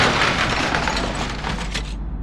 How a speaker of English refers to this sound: But the frog had other ideas. It banged on the windshield until it shattered, the glass blinding me as we spun out, crashing into a tree.